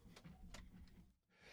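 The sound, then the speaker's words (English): A couple of short, muffled coughs about half a second apart, with a low rumbling hum underneath and a brief dip into near silence before the end. “I'm coughing like crazy today.”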